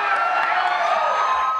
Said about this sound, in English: Wow. That had to be a shocking thing for Fox News viewers to watch, right? Turning on their TVs and seeing a crowd cheering for a socialist plan for Medicare for all.